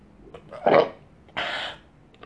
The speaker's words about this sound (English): Sorry, I'm about to burp.